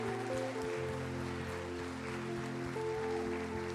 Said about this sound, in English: Come on, people of God. Can you give Jesus a hand clap of praise in the house today?